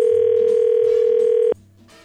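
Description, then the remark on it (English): A telephone call from radio station K95 ringing through on the line: one steady, loud electronic tone holds for about a second and a half, then cuts off abruptly into faint background noise. “All right, buddy, hang in the background here while I try to get her on the phone.”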